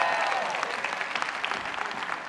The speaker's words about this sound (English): Give him a big round of applause.